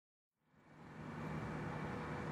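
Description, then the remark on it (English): Steady street traffic at a bus stop rumbles in after a brief moment of silence, a continuous broad roar of passing vehicles with a low engine hum underneath, sustained with no voices. “I'm talking to Rowan while we wait for a bus”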